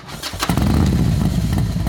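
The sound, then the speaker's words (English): A motorcycle engine cranks briefly, then bursts into life with a loud, steady low roar that settles into a rumbling idle. “In a loud barrage, the engine ignited.”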